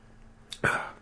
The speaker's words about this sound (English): We should have Tums right before we do our show that it may cut down. It's just burping, right? So I'm not sure what you're going to do there unless you degas it before you swallow it.